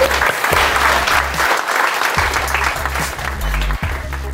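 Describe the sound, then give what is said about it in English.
An audience applauds steadily, a dense, loud wash of many hands clapping that holds at an even level for several seconds. “Can I get another round of applause, please?”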